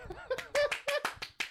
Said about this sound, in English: But you clap. And you just hold the applause.